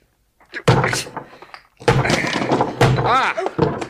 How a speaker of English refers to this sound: There's a sledgehammer in the garage. You want that cellar opened up? I'll open it.